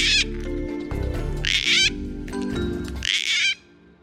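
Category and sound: bird, gang-gang cockatoo call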